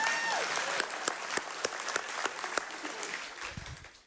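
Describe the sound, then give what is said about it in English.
An audience applauds, a steady wash of many hands clapping with a few sharper, louder claps standing out, fading near the end as a voice begins. “Yeah, go ahead and clap for him if you want to.”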